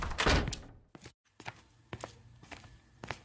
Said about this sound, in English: Make sure you close the door on your way out, young man.